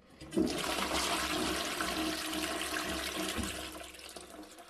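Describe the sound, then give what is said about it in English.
A toilet flushes with a sudden loud whoosh of rushing, gurgling water that holds steady for several seconds, then begins to taper off. No voices are heard. “It will be flushed.”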